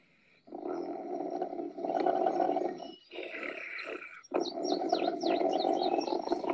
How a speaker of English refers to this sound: So Rufus, the snoring bear, which we're hearing now.